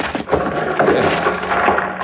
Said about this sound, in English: We don't want to start the rest of that rock coming down. I've been moving rock all my life, son. Here we go.